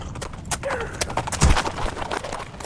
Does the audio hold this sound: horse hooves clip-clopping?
yes